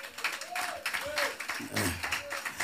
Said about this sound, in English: No. This clapping is suspect.